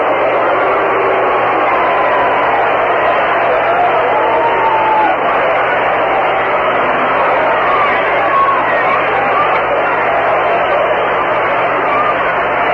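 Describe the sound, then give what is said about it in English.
A baseball crowd roars in protest at umpire Andy Olson's ball-one call on a half swing, a loud, steady wash of voices and jeers that holds without letup, with a muffled, radio-like quality. “The crowd not agreeing with umpire Andy Olson.”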